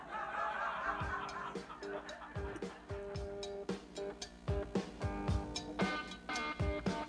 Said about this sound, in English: This is, for me, this is a couple of instances of, I think, good cowbell.